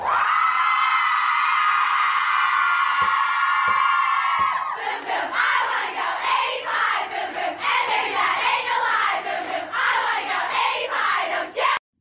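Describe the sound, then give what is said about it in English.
A crowd of young sorority women at sorority recruitment screams and chants at a loud, steady pitch, a sustained high shriek giving way to rapid, rhythmic group chanting with sharp bursts, continuous and overlapping throughout. “It sounds like they're talking in tongues.”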